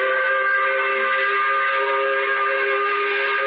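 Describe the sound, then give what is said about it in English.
A loud, steady 5 o'clock factory whistle blares continuously for several seconds, a sustained multi-toned blast with a slight echo and no pauses or talking. “We do it by blowing the 5 o'clock whistle.”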